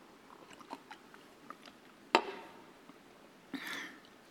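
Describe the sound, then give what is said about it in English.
Someone takes a drink of water: soft mouth clicks, then a sharp snap like a bottle or cap, and a brief breathy slurp or gulp near the end. No talking. “So I'm going to grab water here.”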